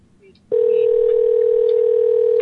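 After a brief quiet moment, a loud, steady Facebook phone call tone sounds and holds unbroken at one pitch until the end, with no voices over it.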